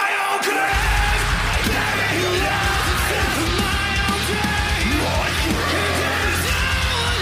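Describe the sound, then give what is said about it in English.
A harsh, loud metal vocal scream rides over dense, distorted heavy music with pounding low end, sustained for several seconds without a break. “Everybody scream!”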